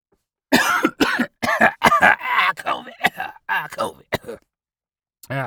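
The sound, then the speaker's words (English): A loud coughing fit from a bad cough, not COVID: a rapid run of harsh, hacking coughs strung together for several seconds, then a pause and one short, raspy voiced sound at the end. “That wasn't COVID. It was just a bad cough.”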